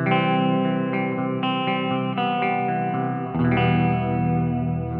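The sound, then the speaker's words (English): A clean electric guitar through the clean side of a 6505 amp strums sustained, ringing chords washed in hall reverb set at about 12 o'clock, time at about 1-2 o'clock, the notes blending smoothly before shifting to a new chord partway through. Steady and fairly loud, with no voices. “The time's at about 1-2 o'clock, and everything else is, you know, the hall setting and everything else is about 12 o'clock, and that's pretty much just does it for you.”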